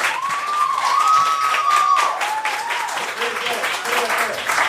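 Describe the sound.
Steady audience applause, a dense wash of many hands clapping at an even loudness throughout, with a faint whistle-like tone and some murmur of voices threaded through it.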